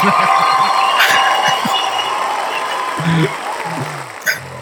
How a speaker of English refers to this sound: That's enough clapping. That was long. Yeah, no, it's like 36 seconds. I can't play for the whole thing.